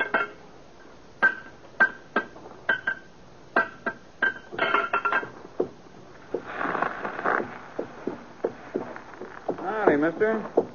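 A horse's hooves clip-clop in a steady, even rhythm of sharp knocks for several seconds, then the beat turns uneven and scuffing as the limping horse loses a loose, split shoe, mixed with louder rustling and breathy noise.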